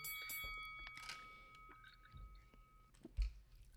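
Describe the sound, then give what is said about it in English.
Someone takes a few big sips of a drink, with soft, wet swallowing and gulping sounds spaced out over a quiet background. No one speaks. “Oof, I'm taking big sips right now.”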